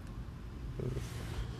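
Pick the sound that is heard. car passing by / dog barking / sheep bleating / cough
car passing by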